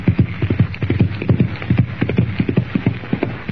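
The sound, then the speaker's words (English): A horse gallops into the darkness, its rider Chuck Connors lashing his spurs into its flanks: hooves in a quick, steady, drumming rhythm, loud, with dense overlapping hoofbeats continuing throughout and no voices. “Lashing the sharp rowels of his spurs into his horse's flanks, Chuck Connors rides into the darkness.”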